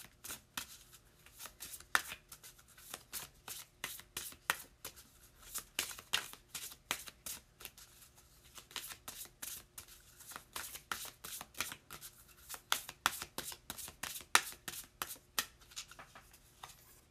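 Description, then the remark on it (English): Cards of the Elemental Oracle deck by Stacey DeMarco being shuffled for a long stretch, a dense run of crisp, papery slaps and riffles in uneven bursts, moderately loud, with no voices over it. “Okay, let's see what we've got here with this Elemental Oracle by Stacey DeMarco.”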